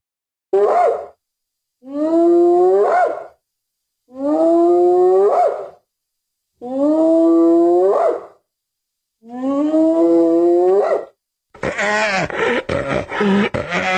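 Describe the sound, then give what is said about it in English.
Hyenas calling loudly: five drawn-out, rising whooping cries separated by short pauses, ending in a harsher, chaotic burst of overlapping cackles. No talking. “That was just a bunch of cackling hyenas.”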